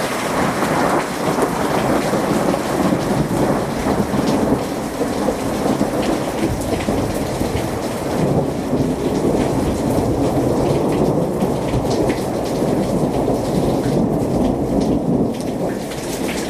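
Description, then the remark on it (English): A thunderstorm in California with lightning, steady, heavy rain pouring down and deep rolling thunder rumbling through, sustained and loud for the whole stretch with no voices. “Okay, that was thunder. There's lightning.”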